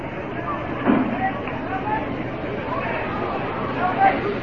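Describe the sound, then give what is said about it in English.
A steady wash of crowd murmur from a big crowd at Jarry Park in Montreal during an Expos baseball game on an afternoon in the bottom of the fifth inning, with many indistinct voices blending into a continuous hubbub and a couple of slightly louder swells around the one- and four-second marks. “Big crowd here at Jerry Park.”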